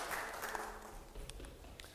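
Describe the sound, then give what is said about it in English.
A crowd of people claps steadily in a dense, continuous patter of applause, moderately loud and sustained for the whole moment without any talking. “Yeah, I think a little round of applause, because that's well done.”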